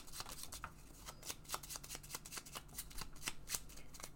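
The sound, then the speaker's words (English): A deck of cards being shuffled, a rapid run of crisp riffling snaps and flicks over about four seconds, with no voices. “Getting shuffled.”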